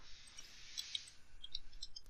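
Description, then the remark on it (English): Faint, quick keyboard clicks tapping out in two loose bursts, light against a soft hiss, with no one speaking. “Okay, just say what I'm typing”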